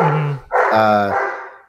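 A dog barks twice, loud and slightly drawn out, the second bark longer and more strained with a fading tail. No one speaks.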